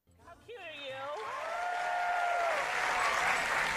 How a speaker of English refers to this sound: No matter how enthused you are, please do not clap anymore because it scares the dog.